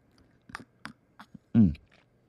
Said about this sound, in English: And as tradition states, I have to slurp.